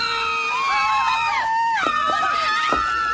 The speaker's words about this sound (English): Are you ready for scream number four? Ready. Here we go.